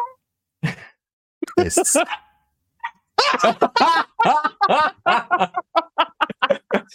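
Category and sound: vocal imitation, people imitating cat meows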